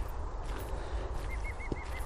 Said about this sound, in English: Oh, a green woodpecker.